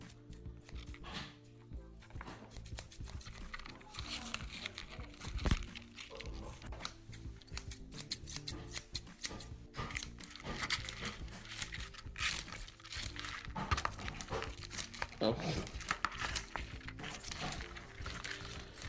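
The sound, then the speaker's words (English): Repeated snipping and squishy crunching as scissors cut up a rubber squishy toy, in an irregular run of soft clicks and crinkly squelches for nearly twenty seconds, with no talking. “So I'm just gonna give it a cut up.”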